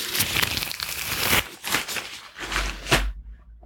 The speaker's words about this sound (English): So I can just gently remove the gloves.